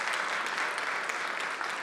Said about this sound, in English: And then lastly, I want to let you know, I know you're like, I'm tired of clapping, no, but I want you to know how generous and how good God is.